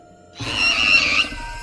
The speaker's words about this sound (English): The creature now lets out this ghastly shriek that rings in your ears.